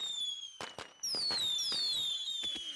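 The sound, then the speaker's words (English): Fireworks going off in rapid succession: several sharp bangs and crackles mixed with high, shrieking whistles that slide downward in pitch, with no voices. “Listen to those fireworks.”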